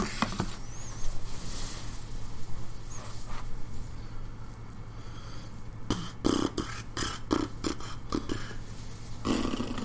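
fart into the microphone

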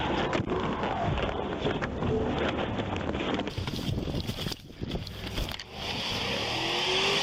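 car engine revving

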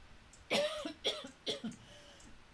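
cough

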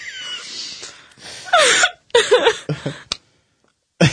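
hiccups

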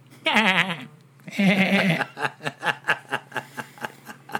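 goat bleating

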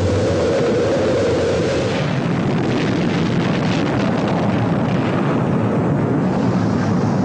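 rocket launch engine roar

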